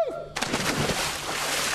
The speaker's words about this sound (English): I'm getting ready to jump in the water into the Lake Brantley pool and do a little swim session. I think it's going to be a little warmer in there.